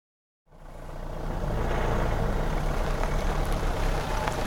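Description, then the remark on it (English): A car engine rumbles steadily while tires hiss over wet pavement, fading in from silence and holding at a constant level with no voices. “Car engine. Tires on wet pavement.”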